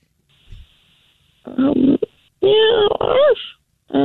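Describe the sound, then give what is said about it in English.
A voice imitates a dog and cat fight with three loud bursts of growling, whining vocal noises, one ending in a rising and falling yowl, separated by short pauses, made by a person at work. “And I really want to hear a dog and a cat get into it.”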